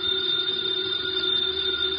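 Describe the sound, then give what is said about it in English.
A house telephone bell rings steadily and loudly with a continuous metallic trill, sustained for the whole moment without pause and with no voices over it. “It's the house phone”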